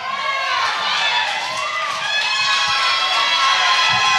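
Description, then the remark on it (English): A church audience shouts together, many overlapping voices rising in loud, sustained cries and whoops with no break across the whole stretch. “If you don't shout off of this, I promise I'm done.”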